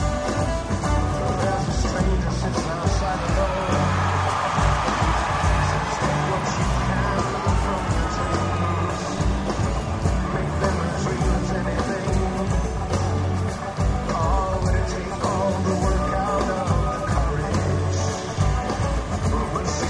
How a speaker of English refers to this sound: But yeah, … returns in the third slot of their return back to live music. That was bananas. And the crowd went bonkers.